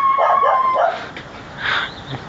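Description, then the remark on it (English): A few high, yappy dog barks and whiny yips come in short bursts from across the street, with a brief pause between them; nobody talks. “We have some pup play people across the street.”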